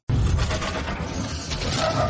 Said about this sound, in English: Okay, now they've hit a black car. Now, a black car would usually imply the bad guys. I actually don't remember if these are bad guys or not, but there are two guys in that car. They get exploded, okay?